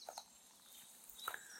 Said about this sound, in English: It's around 5:30 PM. But I can hear a lot of birds, as I'm sure you can too.